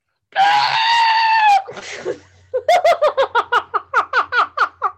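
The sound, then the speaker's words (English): A person imitates a lobster screaming with a loud, sustained, high-pitched shriek lasting about a second, then a brief rasp, followed by a run of rhythmic, cackling laughter bursts. “Can I, do you want me to scream like a lobster?”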